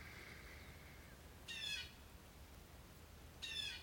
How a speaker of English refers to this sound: And listen to the birds.